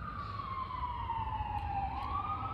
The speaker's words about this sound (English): We don't know where that siren's going, but Lord, we ask your blessing upon whatever situation that is.